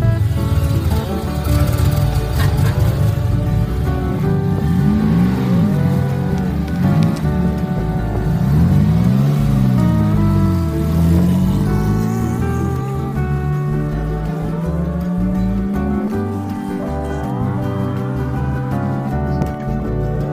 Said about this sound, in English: Stupid car just pulled out, but we got a little situation here.